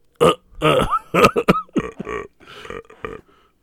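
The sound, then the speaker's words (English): A string of loud burps, several short croaky belches in quick, uneven succession over a few seconds, with no talking. “I thought you were going to burp three times.”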